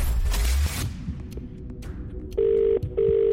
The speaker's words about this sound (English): I'm going to make the call across the Hits Radio Network now. Remember, you need to answer before the phone has rung five times.